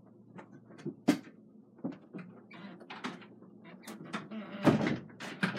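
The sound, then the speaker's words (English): Handling sounds of a door: a series of knocks, clicks and rattles spread over several seconds, ending with a firm thunk as it shuts, with faint muffled voices in the background. “And, hold on, I'm gonna shut the door because someone's talking in my podcasting room just a second.”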